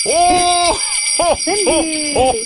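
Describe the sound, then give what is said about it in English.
Sleigh bells jingle steadily and brightly throughout, a continuous shimmering rattle, while a man playing Santa makes an appearance at Christmas, his voice sounding over them in drawn-out, sing-song bursts. “I wasn't going to make an appearance quite this early in the season, and with my sleigh bells, but you just brought the Santa out in me.”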